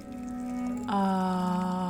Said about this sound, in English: Water just finished boiling. I swear to you, that is my favorite sound in the known world.